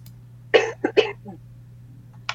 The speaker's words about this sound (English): I was holding in my cough.